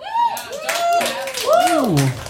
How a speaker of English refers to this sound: Round of applause.